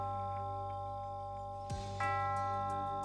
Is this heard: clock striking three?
yes